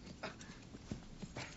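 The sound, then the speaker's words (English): Horse hooves clip-clop at a steady, unhurried walking pace, a series of soft knocks heard alone and fairly quiet. “take the reins of my horse.”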